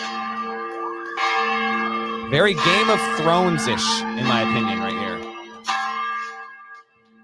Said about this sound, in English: They've got this chapel on campus, and they've got this big old bell. I thought this was kind of cool, kind of signaling to the rest of the campus that something big had happened.